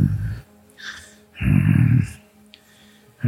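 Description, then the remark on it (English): A voice imitates low, rumbling grunts in heavy bursts, separated by breathy exhalations and hissing breaths, loud with brief pauses between, as a character moving around breathes heavily. “So he's sort of going to grunt the whole time.”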